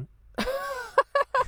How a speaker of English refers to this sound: No, I'm just trying not to cough.